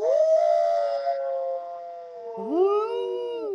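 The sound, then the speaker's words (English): A woman imitates a wolf howl using her cupped hands: a long sustained wavering tone that slides down, then a second rising and falling howl, loud with a hollow, cupped quality. “Now, to get the characteristic wolf howling sound, you just, go, woo, when you're going like this.”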